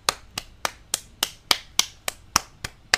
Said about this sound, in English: Y'all hear that? I'm applauding ….